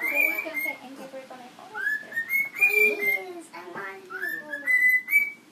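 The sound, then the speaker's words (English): A bird chirps in a series of clear, whistly rising notes, repeated several times, while people's voices murmur softly underneath. “Did you hear the bird? Hear the birdie?”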